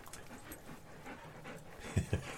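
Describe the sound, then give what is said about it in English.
Dogs panting, a quick, breathy rhythm of soft huffs that grows louder and more pronounced toward the end, with no one talking. “Oh, the dogs are here.”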